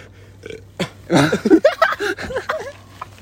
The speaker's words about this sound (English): Hyperventilating and burps. I hope the audio picked that up.